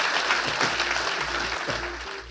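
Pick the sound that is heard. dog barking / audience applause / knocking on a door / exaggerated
audience applause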